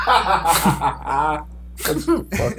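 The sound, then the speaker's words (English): A sharp sneeze bursts out amid chuckling and vocal sounds, with a second abrupt breathy burst following a moment later. “What's wrong with you? You sneezing that?”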